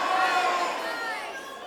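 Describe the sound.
A crowd shouts all at once in a loud burst of overlapping voices, different words jumbled together, then fading slightly over about two seconds: an audience yelling out their guesses of the most popular emoji on a count of three.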